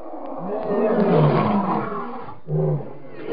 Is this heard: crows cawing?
no